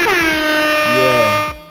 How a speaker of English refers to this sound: Yeah, that's a well-deserved air horn, man.